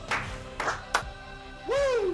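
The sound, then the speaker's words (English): Two people clap twice each but out of sync, giving a ragged scatter of sharp claps, followed by a loud, sustained Ric Flair-style vocal "woo" that slides downward in pitch. “Give me two claps and a Ric Flair to get this going this morning.”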